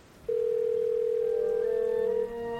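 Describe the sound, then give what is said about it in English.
A steady, loud telephone dial tone as someone makes a phone call holds one unbroken pitch for about two seconds, then cuts off abruptly, leaving a quieter faint tone behind. “Watching from my window, I make a phone call as they gather.”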